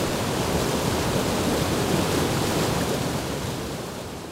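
fast-flowing river water

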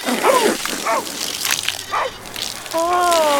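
garden hose spraying water

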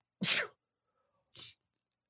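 person sneezing

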